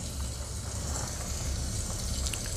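A steady hiss of steam from an iron filled with distilled water while pressing trousers, continuous and fairly loud throughout, with a faint low rumble underneath and no talking.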